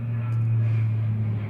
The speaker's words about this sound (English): There's another plane.